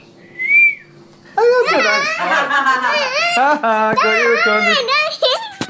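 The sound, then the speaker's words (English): A young girl, recorded by her father, whistles a single short, clear note, followed by a child's loud, high-pitched wordless shrieking and wailing that continues to the end. “My little …, she whistles like a sailor”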